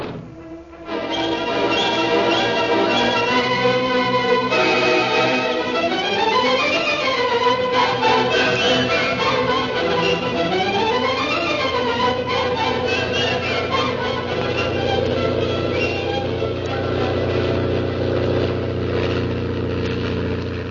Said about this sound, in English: a fast plane roars over his head. Then, with motor cut, it glides toward him.